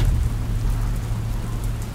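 Steady, heavy rain hisses with a deep, continuous low rumble beneath it, like rolling thunder, holding an even loudness throughout with no voices, from a 12-day storm in Louisville, Kentucky.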